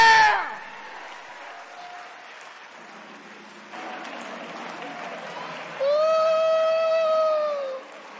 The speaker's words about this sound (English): Church, say amen. Let's give all of them a hand clap. Come on now.